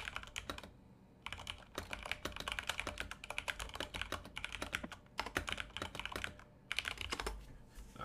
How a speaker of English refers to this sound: I guess I could have done that on my phone and you guys didn't have to hear me type. Sorry about that, everybody listening.